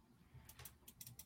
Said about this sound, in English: That's sitting on the keyboard again.